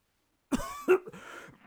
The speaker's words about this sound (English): The cough is a mere nothing. It will not kill me. I shall not die of a cough.